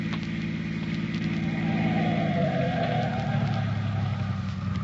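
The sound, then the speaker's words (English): A car coming down a highway drones steadily, then its engine pitch drops as the vehicle slows down and stops, and it keeps idling at a lower rumble. No one speaks. “Unless this car that's coming down the highway stops.”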